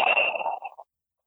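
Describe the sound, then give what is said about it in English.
One audible breath, taken in through the nose and exhaled through the mouth as a group takes a collective breath before a closing prayer: a breathy rush of air with a faint whistling edge, lasting under a second before fading into silence. No one speaks. “So I invite us just to close our eyes, taking a collective breath in through the nose and exhaling through the mouth.”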